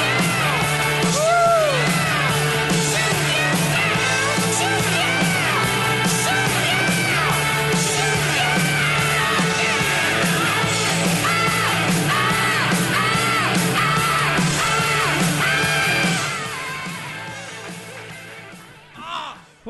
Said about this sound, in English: So, it is my amazing and humble pleasure to introduce this next panelist. He shows us how Dad did it. He shows us how America does it. And it's worked out pretty well so far. Everybody, give a raging round of applause for our Admiral, Kerry Jackson!